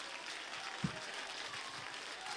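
An audience claps hands in a steady, dense wash of applause that holds at an even level throughout, with a single brief low thump partway through.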